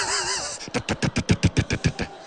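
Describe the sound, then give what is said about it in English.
Roadworks machinery outside: a brief high mechanical whine gives way to a rapid, steady run of about a dozen loud, heavy pounding bursts, with no voices. “So, roadworks.”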